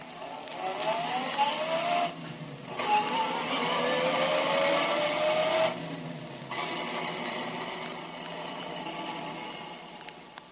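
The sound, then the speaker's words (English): A car engine hums steadily as detective Tracy drives his car to Jess Trueheart's home, its pitch rising and falling with shifts in speed, loud with no voices. “We know, but Tracy does not, that Remo lies concealed in the back of Tracy's car while the detective drives to Jess Trueheart's home.”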